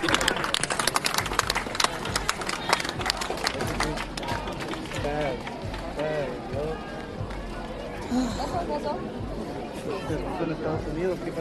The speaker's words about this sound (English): Yeah, we got even thicker. It's even more packed now. Yeah. Don't hide in the fucking crowd.